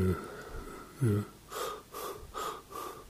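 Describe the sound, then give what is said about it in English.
A person demonstrates shallow panting: after a brief voiced sound, four quick, airy breaths follow in a steady rhythm, fairly soft. “Often sleepiness is associated with a kind of shallow panting.”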